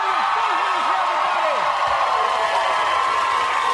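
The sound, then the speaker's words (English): A studio audience applauds and cheers in a steady, dense roar that fills the whole moment, with a few rising whoops and shouts near the start before settling into continuous clapping. “Save your applause.”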